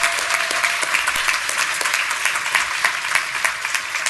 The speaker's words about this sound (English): First of all, we would really like to acknowledge the enormous contribution that our two platinum sponsors bring to the association. We could not put on this conference without them. So, Sage and Intuit, big, big, big round of applause.